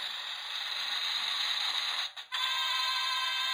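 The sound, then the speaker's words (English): A steady, shrill chorus of cricket chirps from a sound-effects machine about 100 years old, dense and high-pitched, broken by one brief dropout before resuming. No one speaks. “I have applause, a lot of boings and bumps. Let's see. Crickets.”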